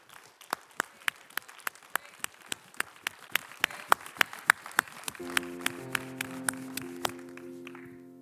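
A standing audience at NorthLake Church gives the Lord a clap offering, clapping together in a steady, brisk rhythm, about three or four sharp claps per second throughout, with sustained held musical tones joining underneath for the last few seconds.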